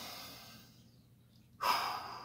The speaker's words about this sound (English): Let's just sit. That's what I tell myself. Just sit. And so I do that. I just sit and I start breathing.